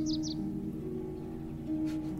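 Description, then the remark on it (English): A bird gives two quick, high chirps right at the start by a lakeshore at a small cottage on a sunny day, then falls silent over a steady low rumbling drone that continues throughout, with no one speaking. “We'd pause and wait for the boats and the birds to quiet down.”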